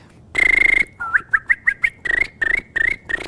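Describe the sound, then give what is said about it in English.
Tongue whistling: one long steady high note, then a run of quick rising chirps, then several short held notes. Clear, bird-like and loud, with no talking. “Is the regular lip whistle, but I can also whistle with my tongue and then go.”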